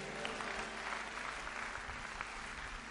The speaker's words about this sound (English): Can I hear somebody clap your hands and say a better amen?